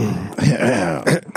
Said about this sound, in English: Dude, I'm over all the sickness and everything, but I just have to clear my throat constantly. It's getting better, though.